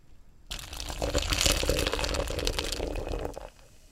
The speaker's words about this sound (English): Should I do a slow one next time so you just hear it? Oh, do a slow little pour too into your microphone.